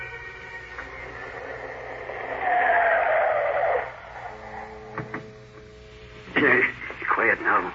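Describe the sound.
In thick fog, a motorboat engine drones and swells into a loud, whining roar as the boat draws closer toward a boathouse, then eases back under a low hum while voices talk over it.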